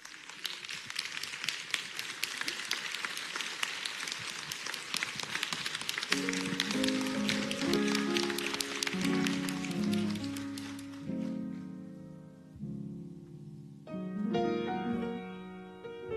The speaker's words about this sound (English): But I would like for everyone to stand up and give my mama a round of applause, please, family and all.